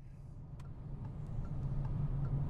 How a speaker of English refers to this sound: Well, we're in the car driving through upstate New York, heading towards southern Vermont, and we're driving, rather appropriately, quite close to Halloween in beautiful autumn colours.